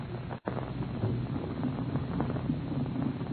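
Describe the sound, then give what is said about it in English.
A steady, low rumbling drone of the three powerful propeller engines of a huge airliner, the Golden Dragon, softly idling with blades lazily turning before its first test flight, continuous, with a slightly uneven throb and no voices. “They are about to take off on their first test flight, and the three powerful engines are softly idling, the propeller blades lazily turning over.”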